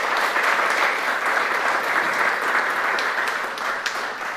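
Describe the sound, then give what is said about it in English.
A crowd claps steadily to welcome back a guest in the morning, a dense, even wash of many hands applauding at a fairly loud level throughout, easing slightly toward the end with no voices standing out. “Oh, yeah, you can applaud.”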